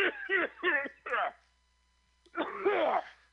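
A person coughs four times in quick succession, then pauses and lets out a longer, rougher coughing fit, loud, with no talking.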